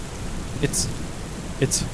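nature, rain with thunder

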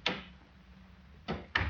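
household object, door opening and closing

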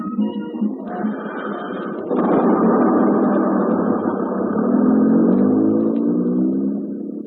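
vehicle, bus engine pulling away

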